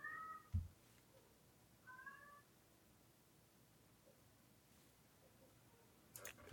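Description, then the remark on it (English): A cat meows twice, short harmonic cries roughly a second and a half apart, with a soft thump and faint clicks against an otherwise quiet background. “Is that your cat?”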